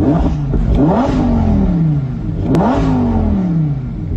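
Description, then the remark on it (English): A naturally aspirated V10 engine with no turbos, in a midnight blue convertible with a black top, revs hard twice in quick succession, pitch climbing sharply then falling back each time, loud with a rough, throaty mechanical roar and no voices. “So here's the thing you don't get with a lot of new cars is that sound, because this is still a naturally aspirated V10.”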